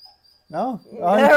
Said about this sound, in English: We're live, and we do apologize in advance for my dog, who's probably going to whine because he doesn't like to be all cradled up.